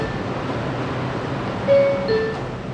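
A steady subway rumble fills the background, then a two-note door chime sounds near the end as the train doors prepare to close, with no voices.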